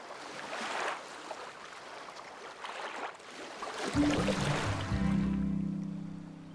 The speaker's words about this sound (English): Blue loved listening to the calming waves that washed ashore on Pirate Panda Island